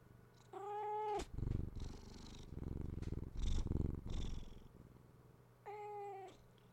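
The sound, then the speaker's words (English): A male cat purrs with a steady, rumbling pulse through the middle, bracketed by two drawn-out meows, one near the start and one near the end. “He's purring.”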